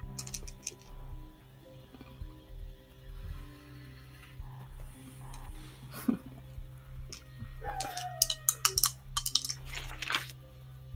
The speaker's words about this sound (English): Sound like a lot of dice.